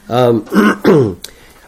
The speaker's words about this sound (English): Well, good morning. Again. I've got a little bit of a cough, so hopefully I can get through this without too much cough medicine here.